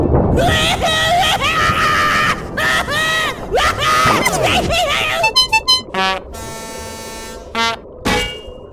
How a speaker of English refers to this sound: Knocked the clock right off the wall. That is some scream. And was that a horn section? Incredible. They lose control of their butt when they scream. It's really something.